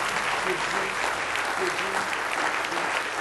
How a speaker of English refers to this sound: Just give the Lord another hand clap of praise before we go this morning.